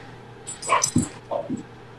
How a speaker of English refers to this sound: Can I get the dog fight going on behind me? Okay, I'll bet on the one with the white stripe on his face.